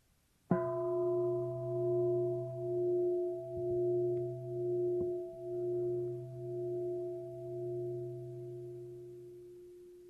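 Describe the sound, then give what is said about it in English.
A meditation bell, rung by a teacher during a mindfulness talk, is struck once and rings on alone, its layered tones humming with a slow, pulsing waver as the sound gradually fades over about ten seconds. “If I ring this bell, notice what is present before any thought arises.”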